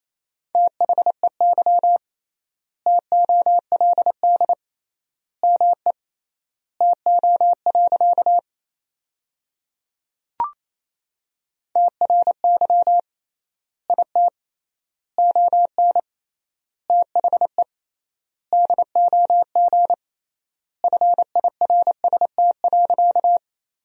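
Morse code sentences made from the 400 most common words, sent at about 28 words per minute with triple word spacing: a steady mid-pitched tone keyed in rapid dots and dashes, grouped into words with long pauses between, plus one sharp click midway. No talking.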